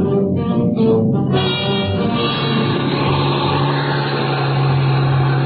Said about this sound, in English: In no time at all, we had the bus clear and headed for civilization. Those snow-covered mountain roads weren't exactly my idea of a speedway, but I gave my motor the gun.